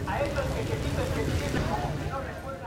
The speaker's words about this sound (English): Mexico City on a typical weekday afternoon. Tacos are sizzling on a street vendor's stall.